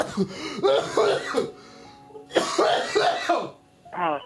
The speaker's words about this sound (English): Clear your throat.